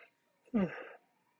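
A brief, breathy yawn with a falling voiced tone, lasting about half a second, clear against an otherwise quiet background.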